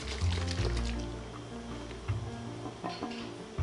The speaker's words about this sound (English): I'm gonna add a little bit of water to the spaghetti sauce. Just because it's pretty thick, or this marinara sauce, just because it's pretty thick.